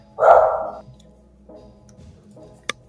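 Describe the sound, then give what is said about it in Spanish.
A small dog lets out one loud, high-pitched bark, followed by a couple of fainter, muffled yaps and a brief sharp click near the end. “¿De quién es el perrito?”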